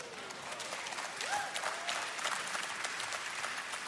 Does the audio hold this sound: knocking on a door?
no